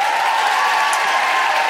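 An audience applauding: a dense, steady wash of clapping that stays loud and even throughout, with no voices standing out.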